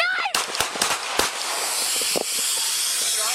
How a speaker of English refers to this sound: Oh, I just heard that. That's the hissing noise.